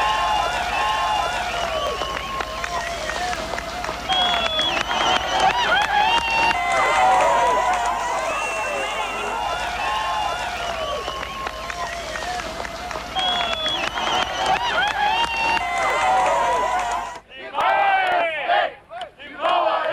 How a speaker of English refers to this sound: I would like to play you a clip just to give you a sense of the jubilance of the moment. This is news footage taken from the Berlin Wall as it was being torn down, and you can actually hear people hammering away at it.